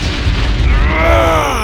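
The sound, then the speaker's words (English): Giant icebergs crash together in a deep, heavy boom, with a sustained low rumble and groaning, creaking tones sweeping over it. The sound is loud and continuous, and no one speaks. “Two giant icebergs crashed into each other behind Doug.”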